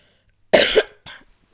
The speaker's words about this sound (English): I really need to wrap this up because I can feel myself, like, needing to have a coughing fit. And it's because I'm talking so much.